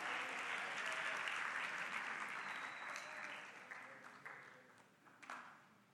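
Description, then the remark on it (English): An audience applauds a helper as he goes back down from the front, with dense, steady clapping that gradually thins and fades toward the end, leaving a few scattered claps. “Let's give him another clap as he goes down.”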